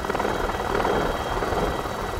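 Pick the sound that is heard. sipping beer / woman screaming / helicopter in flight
helicopter in flight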